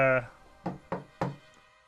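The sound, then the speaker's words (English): Three firm knocks on a wooden door of a bathhouse, evenly spaced, each with a short hollow thud. A brief snippet of a voice comes just before the knocking. “knock at the door of the bathhouse with a code word that you would have set up with your followers while they were securing the place.”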